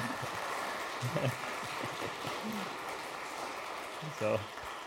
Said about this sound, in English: See, we got applause. And really, we deserve it because it wasn't as easy. I get applause.